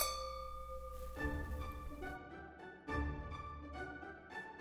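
Wine glasses clink together in a toast, three or four bright strikes with tones that ring and shimmer between them. No one speaks.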